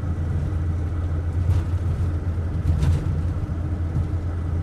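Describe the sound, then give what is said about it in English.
A steady, continuous low engine rumble and road drone from inside a car driving on the road to Riga in Latvia, just past the town of Rasna, with virtually no other traffic on the road; faint tire and wind noise swell briefly, and no voices. “And also in this part of Latvia, there's virtually no traffic at all on the road. I have the road to myself.”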